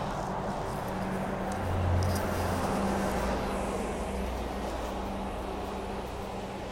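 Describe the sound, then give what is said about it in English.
A steady roar of passing road traffic, with a low engine rumble that swells briefly near the start before settling into a continuous wash of tire and engine noise. No one speaks. “Sorry, I'm just going to let the traffic pass.”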